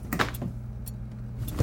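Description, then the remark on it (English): A refrigerator door is opened to get a snack, with a few soft clunks and rattles, then a steady low electric hum continues underneath, ending with another muffled thump. “Well, just when you thought it was safe to open the refrigerator.”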